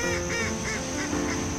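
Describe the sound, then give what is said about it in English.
A flock of ducks at play honks and quacks in a steady, overlapping chatter, fairly loud, with repeated harsh calls pulsing every fraction of a second and no voices. “Hearing the ducks laugh and play.”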